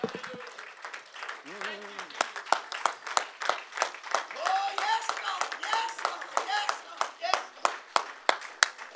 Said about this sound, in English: Let's give the Lord a great big loud hand clap of praise because he's worthy this morning.